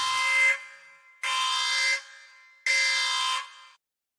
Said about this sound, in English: let's make sure we do this before we go any further for all y'all that haven't read it. Let's hit the buzzer.